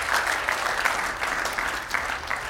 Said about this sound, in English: Could we give the Lord a hand clap of praise today? Thank you, Lord.